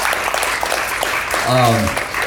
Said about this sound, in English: In fact, congregation, you don't know all that they've done in God's kingdom. I certainly don't know everything, but I know they've done a lot. Will you guys just give them a round of applause? Yeah. Let them know how much I appreciate it.